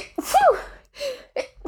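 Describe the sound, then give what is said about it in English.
A forceful sneeze bursts out with a voiced, rising "ah" lead-in, followed by a couple of shorter breathy vocal sounds as it fades. “I gotta sneeze really fucking badly.”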